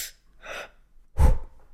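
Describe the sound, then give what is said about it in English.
A person's breathing picked up by a microphone: a couple of soft, airy breaths followed by a louder, sharper intake that thumps the mic, with no talking. “I think I got to get better with learning audio, because you can always hear me breathing.”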